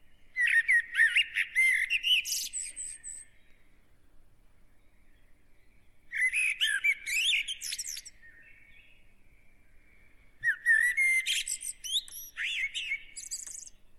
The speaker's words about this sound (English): A plain and simple European blackbird. Why they would make a good gift? Reasons that are too obvious and numerous to point out. Blackbirds do have a bit of vocal range on them and make quite cheerful chirping noises.